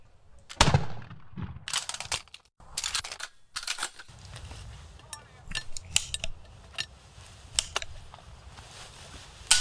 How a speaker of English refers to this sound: Hey, on this day back in 1780, Barnett Davenport became America's first mass murderer. Yeah? What'd he do? Open fire with a automatic musket?